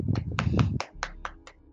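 Hands clap about seven times in a loose, slightly uneven rhythm, each clap a sharp crack. A low rumble sits under the first few claps, and the last ones ring out more cleanly.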